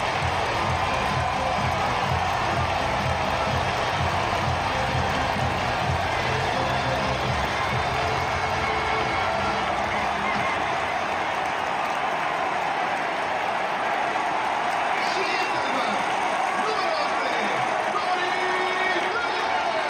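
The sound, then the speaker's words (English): A large stadium crowd at a World Baseball Classic game involving Team Mexico, some in sombreros, roars and cheers after the second home run of the night by Mensis, in a sustained, loud wash of voices, with scattered clapping and shouts rising through it for the full stretch. “That crowd was electric.”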